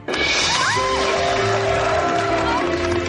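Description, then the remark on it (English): A loud, sustained burst of crowd cheering and applause, dense and steady throughout, with shrill whoops and whistles rising above the roar; a sound clip played from a soundboard to applaud composer Tim Jones for the show's music. “And I think he deserves some applause.”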